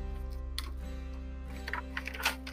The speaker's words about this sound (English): Just gonna flip the paper.